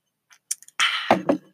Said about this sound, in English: Hold on, sip break.